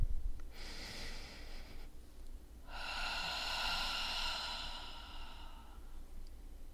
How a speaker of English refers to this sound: Why don't we begin, as we always do, by taking a breath together, intentionally trying to put something down on the exhale. Breathing in.